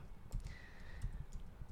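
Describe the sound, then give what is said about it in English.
A few soft, scattered clicks of keys being typed on a computer keyboard, irregular, as someone types a search for COVID death figures in the USA, over a low background hum with a faint high tone. No one speaks. “So we need somebody to do the typing.”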